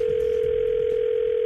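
A steady, unbroken telephone dial tone hums at a constant pitch for about a second and a half, then cuts off abruptly, with faint background noise underneath and no voices.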